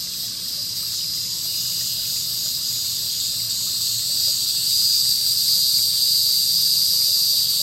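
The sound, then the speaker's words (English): A steady, high-pitched drone of locusts at nightfall by a still pond fills the air without a break, growing slightly louder near the end. There are no voices. “The hum of locusts rose in the air.”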